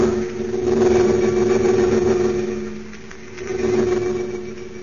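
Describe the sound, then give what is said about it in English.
A steady, droning engine roar with strong low harmonic hum, swelling and easing slightly as it holds a continuous rumble: a converted army bomber in flight high above a dark layer of storm clouds, heading toward the American border; no voices. “High above a dark layer of storm clouds, a converted army bomber streaks in the direction of the American border.”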